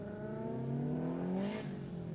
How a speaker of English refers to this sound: Currently, we are at Mobile Bay Cars and Coffee. The event finishing up right now. A lot of cars are leaving, so you may be able to hear some of the cars leaving.